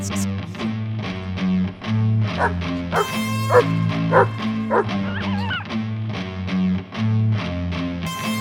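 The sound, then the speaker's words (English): A string of sharp yips and barks from an approaching coyote repeats in quick bursts, loud, riding over a steady, droning musical backing with no one talking. “Coyote coming in.”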